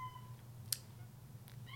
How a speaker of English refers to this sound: I don't know if y'all can hear that. That's my kitty cat right now. What, Momo? Hold on. Everyone's got to say hi to Momo. This is my little girl, Monroe. Hi, big girl. You're meowing. You wanted my attention.